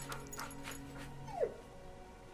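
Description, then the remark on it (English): A dog lets out one short, high whimper that slides downward in pitch against a quiet background hum with no talking. “How do you know my dog's name?”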